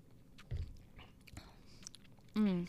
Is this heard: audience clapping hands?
no